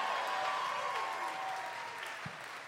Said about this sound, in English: Everybody, come on, give her a round of applause.